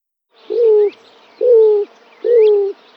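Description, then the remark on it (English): A roadrunner gives three low, dove-like coos, similar to a white-winged dove, at an even, unhurried pace, each a steady mellow note with a slight downward slur, with faint background birdsong. “They do a coo similar to a white-winged dove.”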